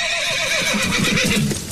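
A horse whinnies loudly, a shrill, quavering neigh that wavers in pitch for nearly two seconds before trailing off, with no talking over it.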